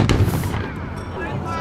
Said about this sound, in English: And that was the cannon. Was it really? Apparently, well, that was the cannon.